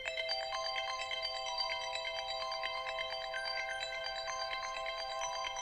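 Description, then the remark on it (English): A phone alarm tone plays on its own, a steady, fairly loud electronic melody of bright repeating notes with a continuous chiming rhythm and no voices. “Is there a perfect alarm tone?”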